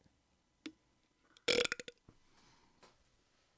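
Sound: burp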